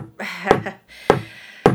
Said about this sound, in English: and on that you hear a knock at your door.